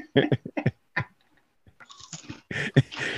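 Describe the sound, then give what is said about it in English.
Crunching of Cheetos cheese puffs from a bag, with several loud, irregular crisp bursts separated by short pauses, then a denser stretch of chewing and crackle toward the end. No talking. “Keep on crunching. It's great background noise.”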